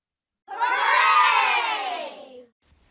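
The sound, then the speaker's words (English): A group of children cheer and shout "hooray" together in one loud, sustained burst lasting about two seconds, rising quickly and fading out, with no other sound around it. “Clap your hands and give yourselves a big shout hooray.”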